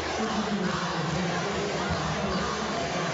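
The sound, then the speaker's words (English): A large crowd of students in a school cheering section cheers and roars continuously at a basketball game against a rival school, late in the game during free throws, a dense, steady wall of noise that stays loud and unbroken throughout. “The Snyder fan base, the cheering section, the students across the way enjoying this one over their rival Northrop.”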